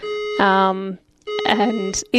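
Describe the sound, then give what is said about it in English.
A fire alarm test sounds: a loud, steady electronic tone with a buzzy, harmonic edge. It cuts out briefly, then resumes in a more uneven, warbling burst. “Fire alarm for you? It is, but it's a test.”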